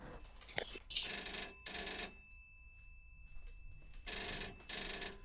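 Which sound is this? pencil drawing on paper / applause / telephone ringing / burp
telephone ringing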